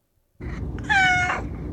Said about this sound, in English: Cat meow.